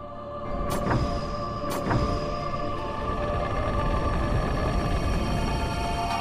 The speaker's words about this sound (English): And so then the door opens.